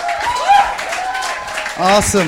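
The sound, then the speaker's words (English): An audience at ICF Cambodia applauds a translator on his first time translating a message, a steady wash of clapping with raised voices calling out and cheering over it, growing louder again near the end. “I give an applause for this translator.”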